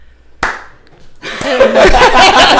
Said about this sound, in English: Do you want us to clap for you?